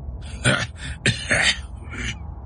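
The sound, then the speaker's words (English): A man coughs in a few rough, raspy bursts, fairly loud, with short uneven gaps between them and no talking. “He coughed.”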